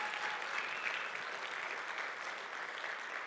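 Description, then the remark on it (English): An audience applauds steadily, a dense, even wash of many hands clapping at a fairly constant level throughout, with no voices rising above it. “So why don't you give a big clap, because it's God who's been doing all the pieces anyways.”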